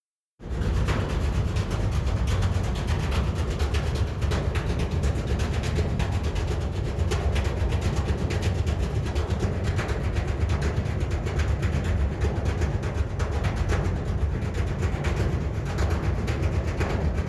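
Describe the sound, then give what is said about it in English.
Water slapping against the underside of a ferry on a ferry ride, a steady low rumble with repeated rhythmic thuds and splashes running throughout, loud, with no voices. “Oh, also, on the ferry ride back, I noticed that the water hitting the underside of the boat had kind of a rhythm to it, and so I recorded that too.”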